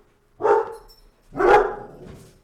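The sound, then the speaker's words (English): Two loud dog barks about a second apart, each a full, resonant woof with a short trailing decay, and no voices around them. “Well, I don't know what my dogs are doing today, but that's pretty cool.”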